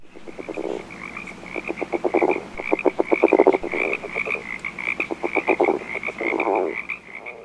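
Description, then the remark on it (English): A California red-legged frog croaks in repeated bouts: quick series of rapid clicking pulses ending in a low grunting growl. A steady high chorus of insects or other frogs hums behind it. “to help conserve rare plants and animals, including California's red-legged frogs.”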